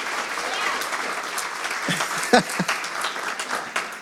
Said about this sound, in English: Can you help me out? Can we clap it up for him, okay? I know that makes him feel uncomfortable a little bit.